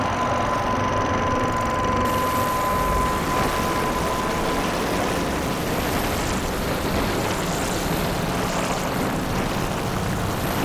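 A black wavetable synth VCO with its pitch modulated by pink noise from an Entropy module through the volt per octave input, giving a loud, steady, churning roar like an engine rumble, with a faint thin whistle tone fading out early on.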